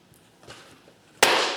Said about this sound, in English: That was the door slamming. I was trying to make it slam. She got out that car.